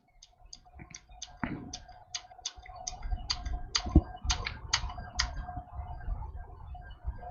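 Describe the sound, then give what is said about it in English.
Typing on a computer keyboard: a run of sharp key clicks in an uneven rhythm, heard alone over a low background rumble and a faint steady hum. “Quit typing there,”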